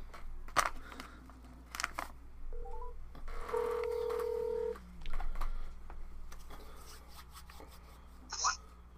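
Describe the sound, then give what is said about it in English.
Phone touch-tone dialing: a couple of quick electronic beeps followed by a longer steady tone, moderately loud, with handling clicks and faint background noise around it. “Hit the Grimm button. Hit the Grimm button.”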